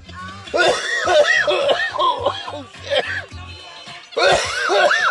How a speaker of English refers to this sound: don't got me coughing.